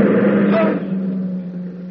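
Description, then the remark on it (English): A car on its way to town drives past on a road, a broad rushing engine noise that is loudest at first and then fades over a couple of seconds, leaving a steady low hum. “A car.”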